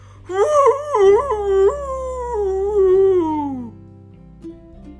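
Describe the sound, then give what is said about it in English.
A single long dog howl, loud, wavering up and down before sliding lower and fading out after a few seconds, with no talking around it. “Did his howling make the cat go away?”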